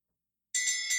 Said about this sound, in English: I gotta, you know, you really shouldn't give me access to this bell. Yeah, that's true. I just probably shouldn't be doing this.